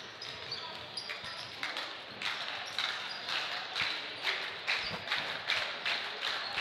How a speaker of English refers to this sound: The student section getting into it with the clapping going on.